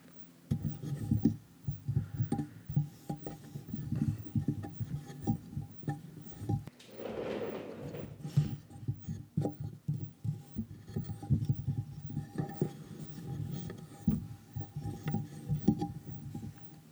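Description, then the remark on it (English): Dull, low thumps from fingers drumming on a microphone base, away from its screen, rapid and uneven, shifting into muffled rubbing and scraping; a brief sneeze breaks in midway. No one speaks. “Started mostly as some drumming and then some just rubbing.”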